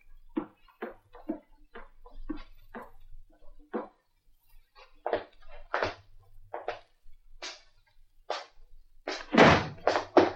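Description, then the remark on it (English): A front door swings closed with a heavy slam near the end, after a run of dull, irregular knocks and thuds, with no one speaking. “Did you close the front door?”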